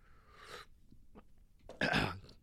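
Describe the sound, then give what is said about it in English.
Mouth noises of someone sipping a drink: a soft airy slurp, a few faint wet clicks of swallowing, then a louder breathy exhale or throat sound. “Let's take a little sip here.”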